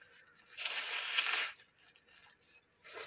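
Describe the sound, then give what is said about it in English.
A forceful, hissy nose blow lasting about a second, followed by faint rustling and a brief second blow starting at the very end. “we're not listening to your podcast to hear you fucking blow your nose, man.”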